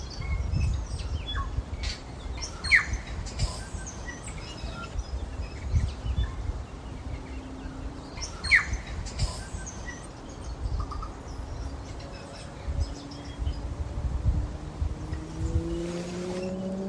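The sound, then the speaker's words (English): A group of tui, a native New Zealand bird, sing in a tree as the sun comes up at Fort Nigel Reserve, New Plymouth, New Zealand, in scattered bursts of sharp chirps, clicks and whistles over a steady low rumble, with a droning engine-like hum rising in pitch toward the end. “I'm listening to a group of tui in the tree just above me.”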